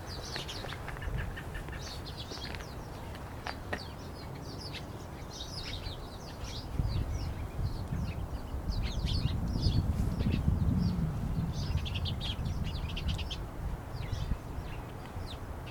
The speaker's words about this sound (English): Yeah, I've noticed every time I walk past this tree, it's very alive with birds. This time of year? Just in the last few weeks, I've noticed that.